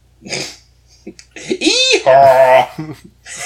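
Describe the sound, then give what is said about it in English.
A person's voice imitates a zebra's call: a breathy huff, then a loud squeaky yelp that rises and falls, followed by a strained, nasal, honking bray, with short gasps around it. “It's like a, it's akin to what a donkey does, but right. If it lived in Bizarro World...”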